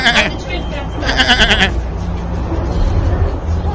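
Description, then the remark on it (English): A person mimics a sheep with two loud, wavering bleats, a short one and then a longer quavering one, followed by low rumbling background noise. “Every sheep for themselves!”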